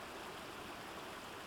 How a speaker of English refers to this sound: A noise of rushing water soon came to their attention, but it wasn't the babbling noise of a stream or the flow of a river. It was something altogether different.